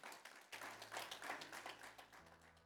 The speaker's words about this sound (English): Come on, y'all give the Lord a hand clap.